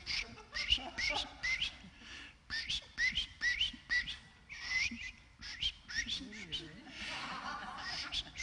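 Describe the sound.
A person whistles a lively run of short, chirping bird-like trills, rising and falling in quick bursts, imitating birdsong with a bit of laughter mixed in.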